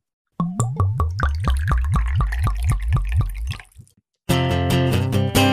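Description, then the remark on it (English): Liquid glugs out of a bottle into a glass in a quick, steady series of gurgling pulses for about three seconds, then stops; a brief burst of music follows. “Pour me another glass.”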